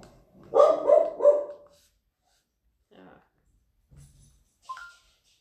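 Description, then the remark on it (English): The household's dogs bark three times in a rapid, loud burst, then a few fainter, short sounds follow after a pause, with quiet gaps in between. “Oh, ignore our dogs.”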